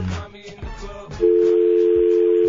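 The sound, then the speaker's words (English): A telephone line rings partway through: a loud, steady electronic tone that cuts in after a muddled stretch and holds unbroken to the end, clear. “Aren't the lines ringing right now?”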